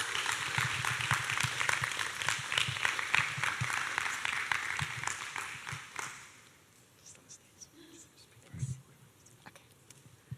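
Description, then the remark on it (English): A church audience at a Sunday service claps steadily for about six seconds, welcoming a couple up to share, a dense crackle of many hands, then the applause fades out into quiet with a few scattered stray claps. “And so let's give a clap to the Lord as we welcome them up as they share.”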